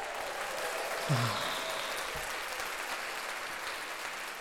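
A crowd applauds steadily, a dense wash of many hands clapping at once with no distinct individual claps, holding an even level throughout without voices.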